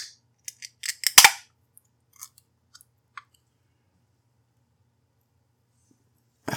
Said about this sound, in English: But before we do anything else, let's do the beer crack, and we'll get into this episode.